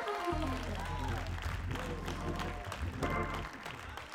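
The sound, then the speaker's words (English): A church crowd at Restoring Hope Church claps and cheers loudly to give God praise over a deep, droning musical backing, with scattered voices rising through the sustained applause before it starts to fade near the end. “Restoring Hope Church, while you're on your feet, go on and clap your hands and give God a praise for the faith that I know that I know that he's able.”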